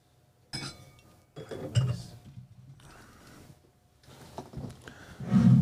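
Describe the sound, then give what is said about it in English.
Wine glasses clink and knock several times in irregular bursts as another glass is fetched during a wine tasting, with soft handling rustles between, ending in a louder clatter of glass. “Let me get you another glass.”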